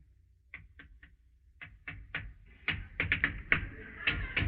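Knocking at a door: two quick sets of three light raps, then a louder, more insistent run of knocks, with no one speaking.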